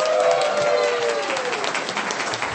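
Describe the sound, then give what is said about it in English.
An audience breaks into steady applause, dense overlapping claps at a strong, even level, with faint voices murmuring underneath. “everyone clap for Ashley, doing a great job”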